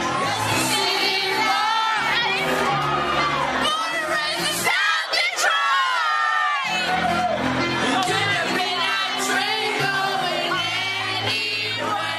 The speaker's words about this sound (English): And as soon as the line South Detroit comes up, everybody screams it at the top of their lungs.